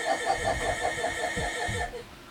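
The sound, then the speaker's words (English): A car engine cranks with a rapid, rhythmic chugging and a steady whine for about two seconds, then abruptly cuts out, leaving a brief sputter at the end. “Hey, man, you know how to turn a car off?”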